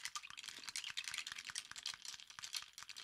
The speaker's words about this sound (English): So since my liqueur is on the bottom, I'm just going to stir it up.